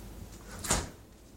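A can of A&W root beer is set back onto a fridge shelf with one brief, moderately loud clunk that fades quickly, over a low steady background hum and no talking.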